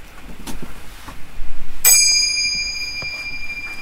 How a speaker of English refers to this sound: Did you hear that? Mm. That was a bell. I found a bell. Well, I needed to find a bell.